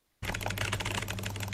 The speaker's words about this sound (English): Oh, no. These typewriter sounds are too intense.